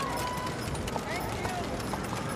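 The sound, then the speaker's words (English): Slow, sparse clops of horse hooves and the steady rumble of carriage wheels in a funeral procession, heard against a dense background of crowd noise and murmuring voices of masked mourners standing several deep along the sidewalk near a bridge. “You hear the slow footsteps of the horses and the slow churn of the carriage wheels.”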